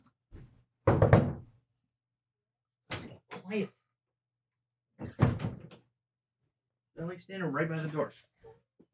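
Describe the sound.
Three heavy thuds on a door, spaced a couple of seconds apart, followed by a brief stretch of voices.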